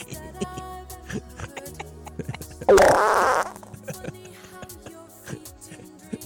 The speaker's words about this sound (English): It's a little fart. A little fart came out.